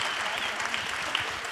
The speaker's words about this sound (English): Thank you, guys. Can you give them a round of applause? Thanks, guys.